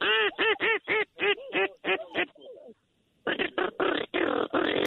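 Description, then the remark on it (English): Loud duck quacks and a hunter's duck call, blown from a hunting blind to bring in teal and diving ducks, come in quick rhythmic bursts, pause briefly, then resume in a dense, overlapping run of raspy quacking. “He's calling in all types of ducks.”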